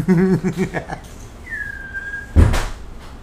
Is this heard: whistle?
yes